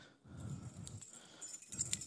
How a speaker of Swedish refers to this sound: Och han hade också massa nycklar. Men han kände vaktmästaren. Därför så hade han massa nycklar. Så när vi busade i skolan och gjorde lite dumma grejer, då hörde man det här.